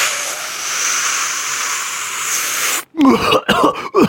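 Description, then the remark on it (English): A long, steady hissing exhale like blowing out smoke after a long, deep hit of weed, then a voice imitates a woman's coughing fit with several loud, rough coughs in quick bursts. “And then cough for like 5 minutes.”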